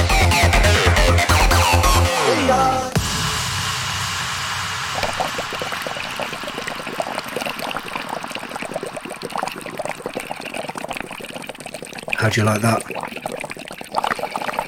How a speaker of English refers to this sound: Bubbles in the bath, ladies and gentlemen, bubbles in the bath.